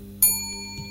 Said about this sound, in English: The bell dinged. But there was no one nearby.